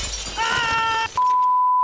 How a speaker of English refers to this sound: I just smashed my TV, yeah.